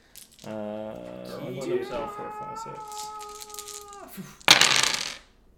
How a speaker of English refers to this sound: Splashes dice everywhere across the table.